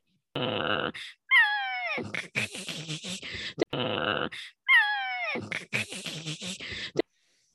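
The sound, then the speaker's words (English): Cats yowl and caterwaul, loud drawn-out wails bending in pitch with harsh, scratchy bursts between them. The same sequence plays twice in a row. “My cats are going through something.”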